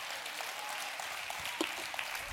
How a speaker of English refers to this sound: Give him a hand clap.